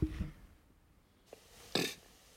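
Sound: burp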